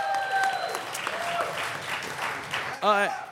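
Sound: audience cheering and applause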